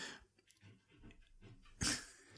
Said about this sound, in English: We're listening to a cat scratch a door right now. She might get through. Oh, my poor baby.